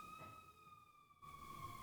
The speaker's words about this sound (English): The ambulance going by.